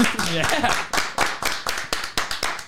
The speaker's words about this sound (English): Clap.